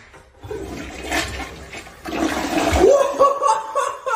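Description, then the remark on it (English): A loud, forceful toilet flush, set off by pushing a button all the way down, rushes with water swirling and gurgling in a rising whoosh as the bowl empties, ending in a draining, tonal swirl. “That's powerful! 10 out of 10.”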